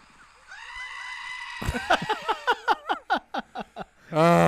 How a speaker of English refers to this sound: One goat. Four goats.